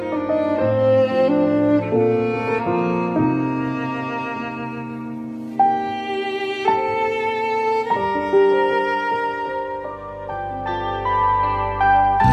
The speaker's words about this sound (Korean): 음악 흐르고 있습니다.